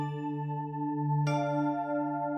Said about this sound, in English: we go around the table taking turns kind of setting up and acting out all these different scenes, and you can tell when they begin and end because of our cool chime noises.